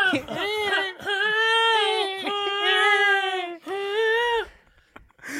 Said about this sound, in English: I heard that too. You know? A very human sounding cat.